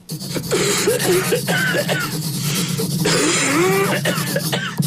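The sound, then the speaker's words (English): Harsh, raspy coughing and throat clearing come in several rough bursts spread across a few seconds, with strained vocal sounds between them over a steady low hum. “It's a gnarly cough you got there”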